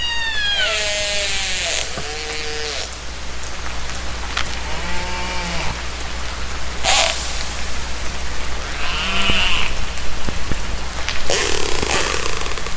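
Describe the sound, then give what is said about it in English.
Orca calls ring out in a series of high, whistling and squealing tones with rising and falling harmonic sweeps, over a steady hiss of underwater noise. No one speaks. “Listen to the musical orca.”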